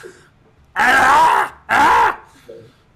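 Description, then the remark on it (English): Two loud, rough gurgling screams in quick succession from a stumbling man, each lasting under a second with a short gap between, wavering and raspy, with quiet background otherwise. “He stumbles a bit, and he's just like, he it sounds like a gurgling scream.”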